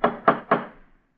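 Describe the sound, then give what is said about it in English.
Three quick, evenly spaced knocks from a fancy metal door knocker, each a sharp clack with a short ringing tail that fades out. Fairly loud, with no voices. “Funny they'd have a fancy door knocker like this way up here.”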